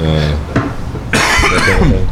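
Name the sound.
coughing fit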